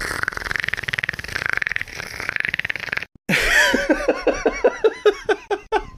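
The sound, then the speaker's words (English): A voice imitates the Predator's clicking: a fast, steady rattle of throaty clicks for a few seconds, a brief pause, then a run of about a dozen rhythmic, croaking pulses. “I'm recording myself doing this fucking Predator noise.”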